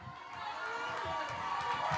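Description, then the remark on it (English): A person stomps while dancing with no music, rapid, rhythmic foot stomps thudding against a hard floor, roughly a few per second, amid a loud, excited crowd murmur and indistinct voices. “I'm dancing because I want to. I'm stomping on the devil's head.”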